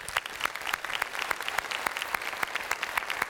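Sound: audience applauding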